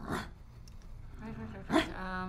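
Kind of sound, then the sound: vocal imitation, voice imitating a dog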